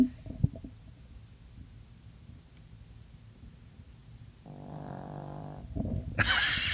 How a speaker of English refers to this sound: If you can listen closely, you can hear my dog snoring. Oh, I think she stopped because she heard me.